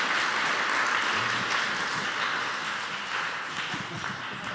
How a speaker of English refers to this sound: Now today, let's give the Lord a big hand clap for the freedom. 来，大家请鼓掌。